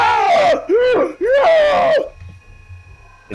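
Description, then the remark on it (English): A loud voice imitates a whirring vacuum laced with tortured screams: three drawn-out, wavering wails in quick succession, then a faint, steady hum lingering afterward. “It makes, like, vacuum sounds like that, but sort of whirring. But in it, you can almost hear, like, these, like, tortured screams.”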